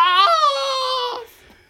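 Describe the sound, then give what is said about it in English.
A Wilhelm scream: one loud, strained, high-pitched cry that jumps up in pitch, holds for about a second, then drops away and fades, with no other voices. “Get a little bit of that Wilhelm scream.”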